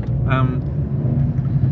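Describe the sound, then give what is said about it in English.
A car's engine rumbles low and steady for the whole short moment, with a brief higher tonal burst near the start layered over the drone. “Sorry, car, out of the way, go.”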